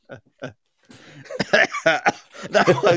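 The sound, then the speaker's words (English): Two short coughs at the start, followed by a busier stretch of voiced vocal sounds mixed with more abrupt, cough-like bursts. “That made me cough, you bugger.”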